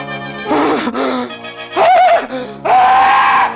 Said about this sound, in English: The scream came at last, for Jafe Morner had seen the devil.